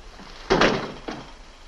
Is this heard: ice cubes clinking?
no